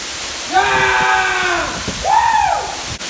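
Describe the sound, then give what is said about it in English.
A waterfall's steady rushing roar fills the scene, constant, while a voice makes two drawn-out wordless sounds over the top of it. “I'm going to go check out this waterfall.”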